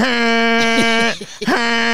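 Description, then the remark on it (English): A voice imitates two big horn honks: a long, loud, steady buzzing blast, a brief break, then a second honk at the same pitch. “Just two big, big honks.”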